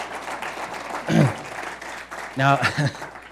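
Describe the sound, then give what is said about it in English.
An audience claps in a steady, dense wash of applause about not wearing masks, with a couple of brief raised voices cutting through the clapping partway through. “Now, I love you, and I hope you clap more for the sake of the why we're not wearing masks more than for the sake of just not wearing masks.”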